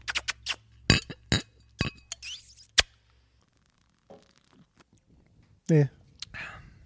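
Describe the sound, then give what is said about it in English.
Several bright, ringing clinks of glasses tapped together in a toast, in a quick cluster, followed by a pause and a short burst of someone speaking. “Ready to cheers? I am. Toast.”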